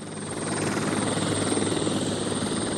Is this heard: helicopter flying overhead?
yes